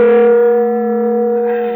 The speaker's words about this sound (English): For an instant, I didn't know what had happened. The shock had jarred the room like it was built on a plate of jello. Then I remembered we were directly under the huge bell of Dorchester Towers, Cairo's version of the Big Ben.